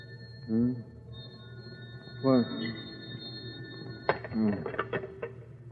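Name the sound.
telephone ringing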